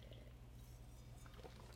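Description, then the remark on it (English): Soft sipping of South African Pinotage wine by Vino Culture from a glass, with a few quiet wet mouth and swallowing sounds over a steady low hum, no voices. “So we can start off with initially, let's take a sip.”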